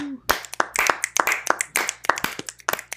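A small group claps for a few seconds, the claps sharp and overlapping in an uneven, steady patter without any voices.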